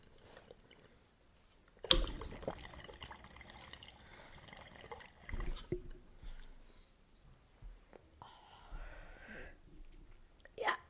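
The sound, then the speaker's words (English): Someone drinks water: a sharp sip and slurp, then scattered gulps, swallows and liquid sloshing, with soft breathy noises and quiet pauses between swigs. “My goal is to finish this water before the end of this episode.”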